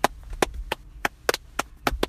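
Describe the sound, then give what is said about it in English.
A single hand clap escalates into a run of sharp, crisp applause, about ten claps in two seconds, at a loose uneven pace with a few quick doubled hits. No one speaks. “I just did a simple clap, and it just escalated into applaud.”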